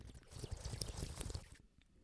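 Noisy, bubbly slurping of a Treo drink for about a second and a half, a rough gurgling hiss with small spurts, then it drops off into quiet. No one speaks.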